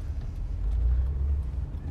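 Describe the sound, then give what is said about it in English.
Steady low engine and road rumble from inside a moving Honda Odyssey minivan, a constant droning hum that stays fairly even throughout. “Whereas we're in a Honda Odyssey, the sexiest car alive. Also known as a minivan.”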